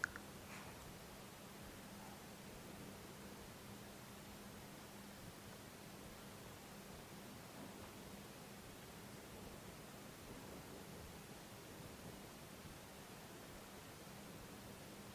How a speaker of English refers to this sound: Whatever sounds or absence of sounds you notice. This voice, construction sounds, movements in the room, hum of the air conditioning